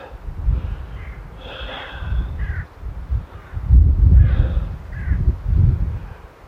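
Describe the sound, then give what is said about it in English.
Chickens calling, two bursts of raspy, mid-pitched clucking a couple of seconds apart, over a steady low rumble of background noise. “I can hear the chickens from here.”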